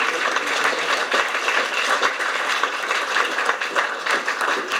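A crowd claps steadily in a dense, sustained round of applause, loud and even throughout with no voices rising above it.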